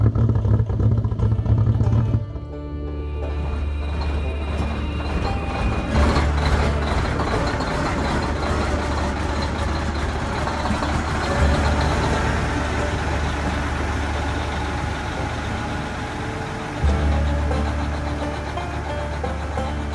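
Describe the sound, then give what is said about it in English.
Heavy military transport truck engines rumble steadily and loudly, a deep continuous drone with mechanical clatter on top. The rumble surges briefly near the end. No one speaks. “and you can see some a couple of those like military vehicles, transports, and a couple of what looks like hot rods.”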